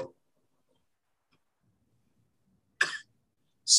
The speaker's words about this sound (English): Love the little cough.